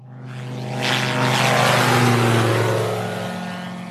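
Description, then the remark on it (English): A Bathawk single-engine, open-cockpit microlight aircraft at Sitara Airfield drones steadily with a buzzing propeller, growing louder as it passes and holding a strong, even engine tone with no voices. “That afternoon, we went to Sitara Airfield to meet a microlite aircraft called a Bathawk. It's an open cockpit machine with a single engine, and it has proved a vital tool in the war against poachers.”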